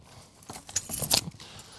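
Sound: keys jangling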